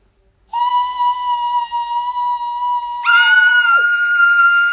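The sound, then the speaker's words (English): A loud, sustained high-pitched scream holds one steady shrill note for a few seconds, then jumps even higher and keeps going, piercing and unbroken with no talking. “That scream is getting on my nerves.”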